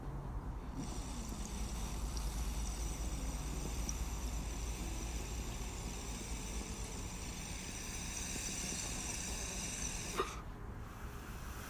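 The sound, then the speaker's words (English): A long, steady hissing inhale of cannabis dab smoke lasting several seconds, ending in a short sharp puff as the smoke is exhaled, outdoors in an atrium in San Francisco. No one speaks. “And right now, for those of you that don't know what dabbing is, it's pretty much a similar form of smoking marijuana, but I'm gonna go ahead and outside to my atrium, which I have here in San Francisco.”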